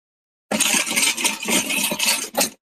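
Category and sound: household object, keys jingling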